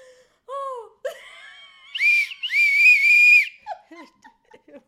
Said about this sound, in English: And then I've just noticed something in front of us and I just think, why on earth? Why is this even in a bag? And why is it in amongst the wires? And just what is it for? Who carries a whistle around?